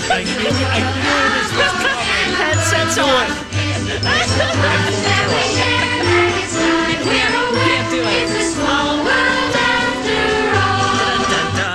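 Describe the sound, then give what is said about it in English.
A Disney ride theme song plays loudly and continuously, a bright, bouncy melody with tinkling high notes over a steady, pulsing bass line, with no voices talking over it. “But by punishing me, you just punished all the My Talkers listening, because now that song is in their head for the rest of the morning.”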